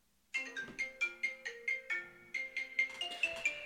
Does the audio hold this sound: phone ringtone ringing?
yes